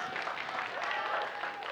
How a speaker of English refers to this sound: So we are continuing our, somebody clapping right there? I haven't even said anything yet. I like that.